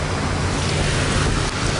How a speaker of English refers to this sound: This whole area is prone to flooding. Now that the water is breaching the dunes off of the beach, this whole area, it will flood.